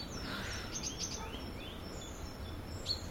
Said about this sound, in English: I think it's been interesting to hear the variety of sounds that the birds make. The robins are really interesting because they're going all night. Some are singing all night.